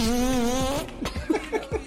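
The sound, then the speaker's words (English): A loud, buzzy fart sound effect used as a buzzer blares for nearly a second with a steady low pitch, then cuts off into a few short, quieter blips and murmurs. “That should be the buzzer, man. I don't know. It really is a wonderful fart.”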